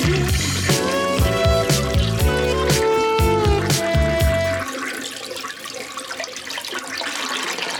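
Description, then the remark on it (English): A toilet flushes with a steady, rushing gush of water that carries on to the end, preceded by a few seconds of rhythmic music with a thumping beat. “Let that flush down. Toilet sound.”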